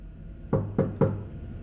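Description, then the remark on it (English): Three firm, evenly spaced knocks on the wooden door of Mr. Isaac Harris's office, made after a brief hesitation, with a faint hum underneath and no voices. “Bill walks down there, hesitates, and then knocks.”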